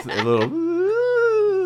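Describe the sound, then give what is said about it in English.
A voice imitates a little whimper of a small fart released at death: a short strained burst, then a thin, sustained whine that rises slightly in pitch and sags at the end, steady and moderately loud. “This is a little whimper.”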